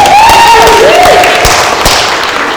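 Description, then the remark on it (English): An audience in a church service cheers and applauds for a pastor being called up to the front, a loud, steady wash of clapping and shouting that stays full throughout, with a couple of bright whistles rising and falling over the noise. “Let's cheer for him.”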